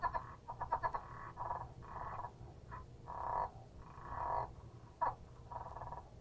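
A southern leopard frog calls in a series of low, clucking chuckles, short rapid pulses alternating with longer rattling bursts, fairly faint against a steady background hum, with no voices.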